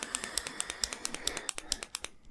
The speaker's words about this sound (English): it's just him clicking the pen the entire time ruining his and everybody else's life in front of him.